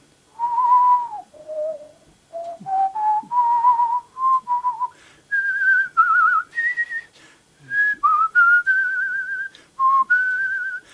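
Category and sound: human body sound, person whistling a melody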